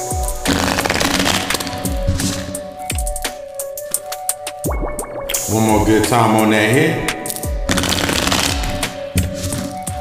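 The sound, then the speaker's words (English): Crisp bursts of rapid crackling as a deck of tarot cards is shuffled repeatedly, with a steady tonal drone underneath and a short stretch of someone speaking midway. “Let me get the car shuffled up real quick.”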